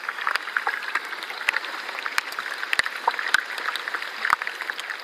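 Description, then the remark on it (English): Ice of a small, glassy, melted iceberg crackling and fizzing as tiny flakes of ice crack and break, a dense, steady patter of tiny pops with sharper, louder snaps scattered throughout, like a continuous soft sizzle with no voices. “It was bubbling and fizzing away.”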